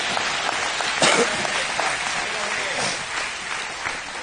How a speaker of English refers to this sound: Can we give Jesus a good hand clap for that right now?